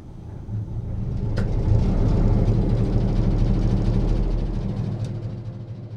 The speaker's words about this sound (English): We are priming it right now. That big diesel, it's 12 cylinder, so it takes a little bit of a prime to prime it up.